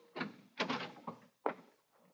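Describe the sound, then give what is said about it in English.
A door being opened to let in the police, with a short series of clunks and rattles from the latch and frame, fairly quiet, with no voices. “Open the door.”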